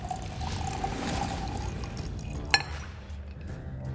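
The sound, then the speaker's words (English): A steady pour of 2 ounces of orange juice into a glass of ice and tequila for a couple of seconds, then the stream tapers off and one bright clink of ice rings out. No one speaks. “Next, add 2 more ounces of orange juice. Again, same thing because of the ice.”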